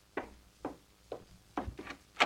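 Knocking at a door: four evenly spaced raps, then a couple of quicker ones, the final knock the sharpest and loudest. No one speaks.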